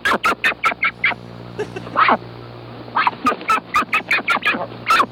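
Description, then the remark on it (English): A rapid string of loud, nasal duck quacks, arriving in quick bursts with a brief lull midway, over a steady low electrical hum. “Now we're on the bird calls.”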